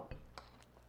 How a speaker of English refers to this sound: do you mind if I chew into the mic? I do, but you may. For this honey alone. Nut toasted oats.